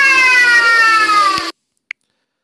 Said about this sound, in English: That was a notification. I'm glad you were able to hear that. It probably blew your ears out. I apologize for that.